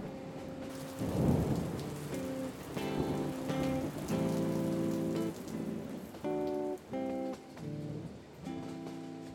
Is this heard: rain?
yes